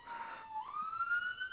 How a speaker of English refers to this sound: Is that a police siren?